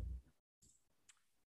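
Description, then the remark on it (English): A handful of quick clicks from keys hit hard on a mechanical keyboard, starting with a dull thump, then brief clattering bursts and one sharper click near the end, fairly faint and with no talking. “My mechanical keyboard is very upset at you. I'm making very loud noises when I'm hitting the keys.”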